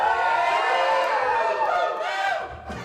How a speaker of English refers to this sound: You scream and yell. Yeah. Yeah, there we go.